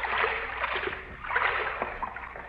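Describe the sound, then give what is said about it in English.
Continuous sloshing and splashing of waist-deep water in a dark sewer, with uneven surges as someone wades through it step by step; no voices. “Water's not so deep. It's only up to my waist.”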